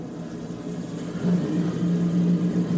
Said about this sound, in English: There we go. Captain Harvick in the Busch Light Apple car. The engines are fired up.